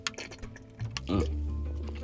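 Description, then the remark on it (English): A sip of water: a few wet slurping, dripping sounds followed by a gulp and a low, sustained hum. No one speaks. “Let me take a sip.”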